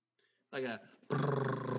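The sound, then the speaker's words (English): A voice imitates a drum roll: a short voiced burst, a brief pause, then a loud, sustained rolling trill with a rapid rattling pulse, almost like a growl or purr. “Can you make a drum noise for me?”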